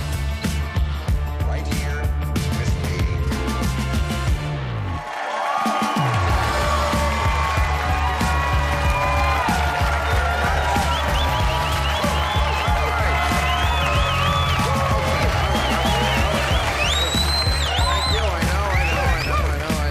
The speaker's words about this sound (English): First is the fake applause, then the real one. It's like, that's what the guy told us to do. And now we really like you.